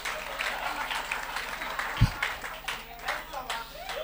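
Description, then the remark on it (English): An audience claps together in a dense, steady burst of applause that carries on for the whole stretch, with one heavier low thump partway through. “Those who have done something, they are quick to clap.”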